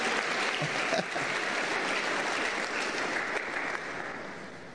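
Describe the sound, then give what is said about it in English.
Sustained applause from an audience, a dense wash of many hands clapping at steady volume for several seconds before easing slightly toward the end, with no voices rising above it. “Clap for this person. Salva de palmas para essa pessoa.”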